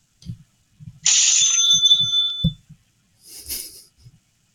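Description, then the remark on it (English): A mechanical cash register rings: clunky key thumps, then one bright, sustained bell ring that fades after about a second, followed by a rattling clatter and a few more clicks. “Just a cash register.”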